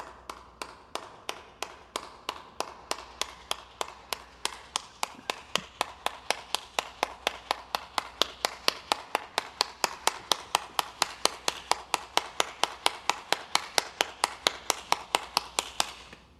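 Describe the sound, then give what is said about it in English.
Steady, rhythmic hand clapping with sharp, crisp claps at a brisk even pace, about four per second. It continues without pause for the whole stretch, with no voices. “Seen the hands clapping part of that a million times.”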